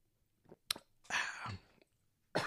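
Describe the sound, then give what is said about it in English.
A quiet slurping sip of coffee lasting about half a second, with a small click just before it and another short breathy sip at the end, no talking. “As always, open it up to the chat while I take another sip of coffee.”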